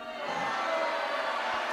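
A crowd cheering in a dense, steady roar of many voices that swells in within the first moment and holds at a constant loud level, with no single voice standing out.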